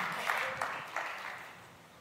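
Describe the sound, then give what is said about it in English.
A crowd applauds in a dense, steady patter of clapping, with a few sharper claps standing out before the whole round gradually fades quieter. “Hey, let's give him a round of applause.”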